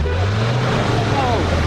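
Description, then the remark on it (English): Motorbike engines in busy street traffic, many ridden by delivery riders and commuters on fossil-fuel combustion bikes: a steady, continuous low drone of idling and revving motors, with a brief higher whine rising and falling near the end. “There is a motorbike everywhere you look.”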